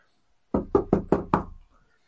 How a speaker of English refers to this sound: You'll hear the rattling of doors. I mean, obviously, quite a few people are out.